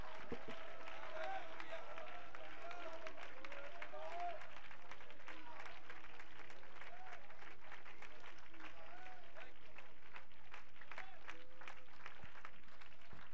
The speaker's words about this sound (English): Somebody clap your hands and magnify God. Come on, somebody really magnify Him tonight.